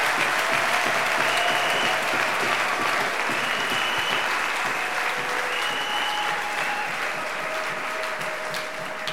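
Sustained audience applause, a dense wash of many hands clapping steadily for about nine seconds at a loud, fairly even level, with a few faint tonal whistles or cheers drifting through.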